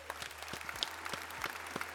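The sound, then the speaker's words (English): A few hosts clap their hands together in a brisk, uneven burst to end the show, the sharp slaps overlapping for a couple of seconds with no talking. “Why don't we go ahead and clap it out?”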